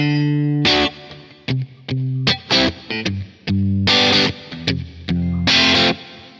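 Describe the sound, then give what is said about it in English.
Loud, distorted electric guitar chords played in short stabs and longer held strums, processed with a natural reverb effect (decay time 1.5 seconds, room size 6.9, no pre-delay, mix level 27.5) that sounds like a big recording room and softens the tails. No one speaks. “I choose the natural reverb, and it creates something like a big recording room.”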